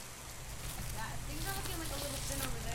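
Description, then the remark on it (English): Steady rain hisses down in a backyard in northeast Portland in the evening, in a dense, continuous patter, with faint, indistinct voices of volunteers picking apples from a tall tree murmuring in the background. “It's raining in a backyard in northeast Portland.”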